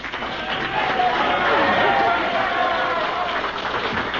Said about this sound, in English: In the middle of all that applause, one of you guys holler, "Take it off, baby!" Let's try it again.